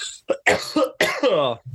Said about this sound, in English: I'm going to cough.